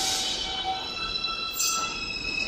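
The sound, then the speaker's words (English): A New York subway train's departure chime of three pure high tones rings out over the steady rumble and hiss of the train at a station platform as the train is about to leave, with no one speaking. “It's a sound that you hear when you're standing on the platform and the train is just about to leave the station.”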